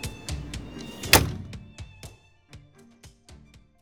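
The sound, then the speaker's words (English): An exit door opens and shuts with a heavy thud that reverberates in an office, followed by a string of softer clunks and knocks that fade out over a few seconds, with no voices. “Mistress Maud remained seated, scribbling idly on a writing pad until the sound of the exit door opening and closing reverberated in her office.”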